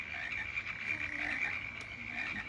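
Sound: frogs croaking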